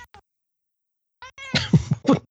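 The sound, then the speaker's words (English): A cat yowls: a couple of short, tonal cries, a brief pause, then a louder run of harsh, ragged yowls and hissy bursts over about a second. “Cat, somebody decided to freak on me.”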